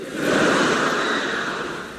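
A single long, breathy gasp, loud, a rush of air that holds steady for about two seconds and then fades slightly, with no talking around it.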